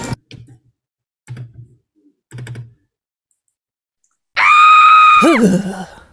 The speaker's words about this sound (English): Scringe. To scream and cringe at the same time.